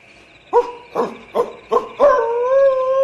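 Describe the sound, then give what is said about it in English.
A wolf lets out four short, rising yelps in quick succession, then breaks into a long, steady, wavering howl that carries on to the end. It is loud and clear, with no voices. “The wolf's going to attack.”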